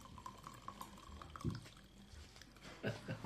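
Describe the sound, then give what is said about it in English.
Tea pours from a small one-person teapot in a steady trickling stream for a few seconds, with a couple of soft low bumps partway through. “And it pours rather than dribbles.”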